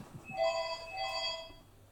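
A telephone rings with a bright electronic tone in two quick back-to-back pulses, steady in pitch with a buzzy, harmonic edge. No one speaks.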